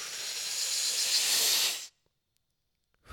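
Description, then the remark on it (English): A long, steady exhale during a breathing exercise, an airy hiss held for nearly two seconds before it stops abruptly into silence, with a faint breath starting again at the very end. “And you let it out.”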